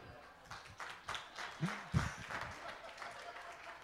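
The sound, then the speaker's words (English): A crowd claps in a steady patter of overlapping hand claps, with a few louder bursts and a brief voice cutting through partway. “Okay, she's going to watch the video and see everybody clapping and be like, what are they clapping for?”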